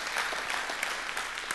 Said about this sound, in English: Give God a praise clap or something for that.